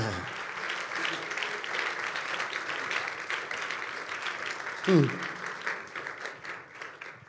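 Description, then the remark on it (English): A crowd of Christians claps for Jesus steadily for several seconds, a dense, sustained wash of hands with a brief louder swell near the end and a few voices faintly mixed in. “The Christians are in this place clapping for Jesus.”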